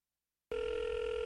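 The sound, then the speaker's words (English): After a brief silence, a telephone ring tone for a prank phone call suddenly starts, a steady electronic tone that holds loud and even to the end, with no voices. “Oh, prank phone calls. His prank phone calls are epic.”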